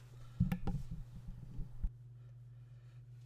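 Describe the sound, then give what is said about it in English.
A short cough bursts out near the start, followed by a few scuffling noises and then a steady low hum with quiet background hiss. “Chad muted his mic to cough. And I did not.”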